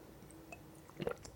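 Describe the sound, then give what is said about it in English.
A quick sip of water: a soft wet slurp and swallow, quiet and brief, with faint mouth sounds and no talking. “I just need to like take a sip of water.”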